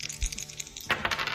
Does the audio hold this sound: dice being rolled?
yes